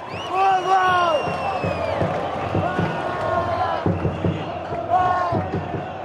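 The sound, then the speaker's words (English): A large crowd of fans at a Brazil versus Bolivia football game in Morumbi Stadium sings and chants loudly with an echo, with steady booming hits from huge 10-foot drums punctuating the singing at a regular rhythm. “They are out of their minds singing in huge 10-foot drums.”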